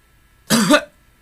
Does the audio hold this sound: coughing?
yes